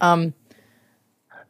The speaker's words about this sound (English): And, oh, my God, the burp is coming. Don't you wait, listeners. It's happening. Just wait.